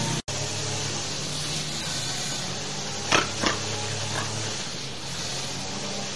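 A lawnmower mowing a backyard drones steadily with a low hum and a wash of hissy noise, broken by two short louder bursts midway through; no one speaks.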